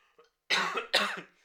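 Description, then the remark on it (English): A person gives two harsh coughs in quick succession, close to the microphone and fairly loud, preceded by a faint little throat sound, with no talking. “don't point the microphone at me when I'm coughing.”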